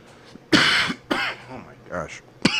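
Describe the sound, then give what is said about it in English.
A loud bout of harsh coughs and throat clearing from a person who has been vaping, three or four rough bursts with brief raspy pauses between them, ending in one more sharp cough. “Or use a cough button, which is the mute button.”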